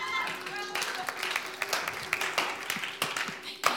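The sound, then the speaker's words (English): An audience applauds: a dense, steady patter of many hands clapping for a few seconds at moderate volume, with a faint murmur beneath and a few sharper claps standing out near the end. “You guys can clap.”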